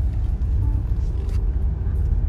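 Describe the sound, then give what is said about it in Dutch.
A car's low, steady engine and road rumble holds at an even loudness throughout, with no clear rise or fade and no voices. “Auto.”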